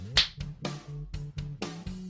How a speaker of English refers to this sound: One, two, three, clap.